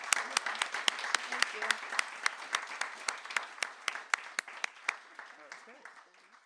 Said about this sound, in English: Let's have one last round of applause, and thank you all so much for being here.